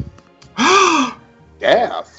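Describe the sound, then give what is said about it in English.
Two loud, sharp vocal gasps in quick succession, the first longer and more drawn out, delivered with exaggerated theatrical shock. “Gasped. Clutching my fake pearls.”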